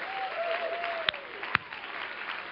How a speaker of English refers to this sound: Why don't you clap your hands to the Lord if he's been good to you?